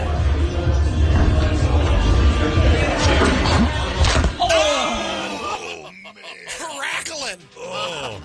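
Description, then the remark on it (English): A sharp impact as a female climber misses, falls and hits the ground, with a snapping crack of a breaking leg cutting through busy noise, followed by pained groans and strained cries. “Right, when she hits the ground, you'll know. Listen for the snap.”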